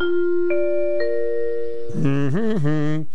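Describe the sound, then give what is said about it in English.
A school recess bell chimes three clear, sustained notes struck about half a second apart, ringing together before a voice starts speaking over their fading tail. “The recess bell was always a good one.”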